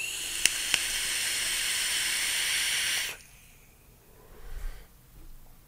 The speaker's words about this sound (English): This vapes really well. The airflow comes in from the top. So when you have your mouth on the drip tip, you can feel air kind of rushing past your lips going down into the tank.